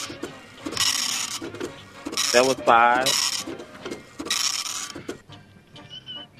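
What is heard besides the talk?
dot matrix printer printing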